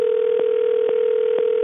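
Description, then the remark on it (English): A steady, single-pitched telephone ringing tone of a call to a truck driver drones without a break, slow to be answered, with soft clicks pulsing through it about twice a second. The sound is thin and band-limited like a phone line, and nobody speaks. “Let's call him up right now. Gonna call him.”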